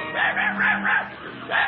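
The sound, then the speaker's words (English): A small dog, Toto, yaps in a quick run of four high, sharp barks, pauses briefly, then lets out one more, with a faint low hum underneath. “Her dearest friend is her dog, Toto.”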